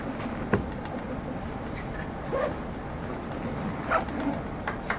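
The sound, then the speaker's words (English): A zipper is drawn along a stuffed, packed bag in a few short, raspy pulls, over a steady low rumble of background noise with no talking. “And then we zip it up.”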